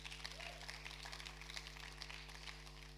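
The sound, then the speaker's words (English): A crowd applauds steadily for about three seconds, a dense, even patter of many hands clapping, fairly soft overall, with a low steady hum underneath and no one speaking. “We facilitate that deserves a round of applause.”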